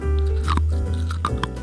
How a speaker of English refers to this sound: Chewing ice? Uh-huh. Delicious. Full of vitamin W for water. It sounds so...